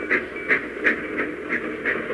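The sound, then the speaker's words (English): A streamliner train bound for Reno rushing past, its wheels clicking in a steady, rapid rhythm over a continuous rumbling roar. No voices. “Slim was strangely quiet after the streamliner had passed.”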